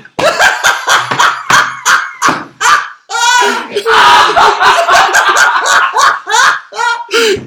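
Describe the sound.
A run of sharp, percussive smacks as a woman slaps herself in the face, followed by excited laughter and voices talking over one another.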